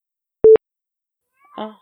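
A short electronic beep sounds, then after a pause a cat gives one brief meow. No one talks.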